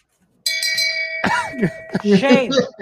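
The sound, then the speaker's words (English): A bright shame bell sound effect rings out suddenly with a few quick strikes, its tone hanging and slowly fading while voices start talking loudly over it. “Oh, that's a lot of bells, 14 blocks. God, that's so, a lot of shame bells.”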